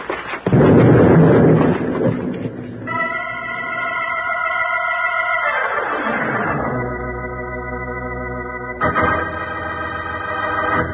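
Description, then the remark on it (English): A loud, booming explosion of a bag with a burning fuse thrown into a cave erupts and rumbles for a couple of seconds before fading, then sustained brassy musical chords take over and swell to close the passage. “there's smoke coming out of that bag. A fuse burning. Throw it back in that cave”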